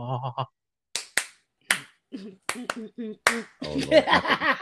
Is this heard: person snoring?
no